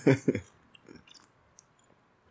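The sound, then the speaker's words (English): Two quick slurping sips of lemon water from a glass, followed by faint wet mouth clicks and a soft swallow amid quiet. “Yeah, actually, I'll give me another sip.”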